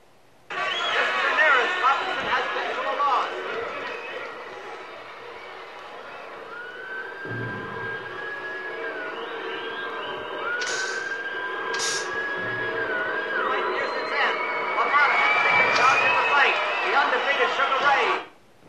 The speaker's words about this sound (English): Note again the interesting sound effect, a slowed down whistle intercut with crystalline sound of the flashbulbs.